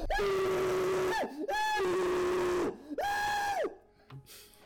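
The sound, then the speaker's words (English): A man screams loudly while sitting on the toilet in a bathroom, in three long, sustained bursts with brief breaths between, his voice strained, as faint rock music plays in the background, fading out at the end to quieter background sound. “… is screaming for his life on the toilet while faint rock music plays in the background.”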